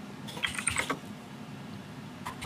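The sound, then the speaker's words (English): A quick burst of keyboard typing, several rapid clicky keystrokes, then a pause and one more faint key tap over a low steady background hum. “And if my keyboard is too loud, let me know.”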